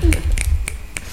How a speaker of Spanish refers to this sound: Wow. Wow, chasquiditos.